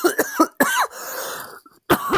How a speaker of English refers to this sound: Sorry, I'm just about to cough.